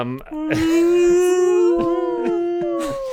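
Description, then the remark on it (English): A long, tormented wailing howl rises and holds for about three seconds, loud, its pitch wavering slightly as it drags on, with faint scuffs and clicks around it. “So you hear the tormented wails and screams”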